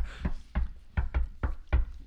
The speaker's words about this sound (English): Table knocking's a really good quality on a podcast, I find.